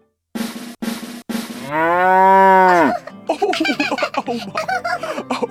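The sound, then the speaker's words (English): Three quick buzzy bursts lead into a long, loud cow moo that swells and then cuts off, followed by a stretch of lively, bubbly laughter. “We almost got it on the first try, but looks like that interrupting cow is roaming the neighborhood again.”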